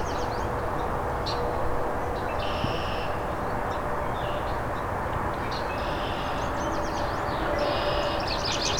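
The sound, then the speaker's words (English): A palm warbler's thin, buzzy trill repeats about three times, fairly faint over a steady rumble of wind or background noise. “So after this palm warbler, I'll go for the yellow warbler.”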